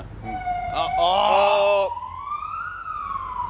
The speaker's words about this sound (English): That's just an ambulance on its way to Hurston.